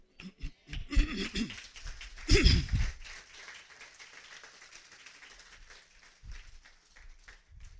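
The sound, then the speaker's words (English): An audience claps in a dense burst of overlapping hand claps, mixed with a few voices or laughs, then the applause thins to a softer, scattered patter that lingers. “Appreciate your clapping.”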